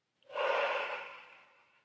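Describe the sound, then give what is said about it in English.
A single deep, breathy rush of air as someone breathes in and releases, fairly loud at first, then slowly fading over a second or so. No one speaks. “Breathing in and release everywhere.”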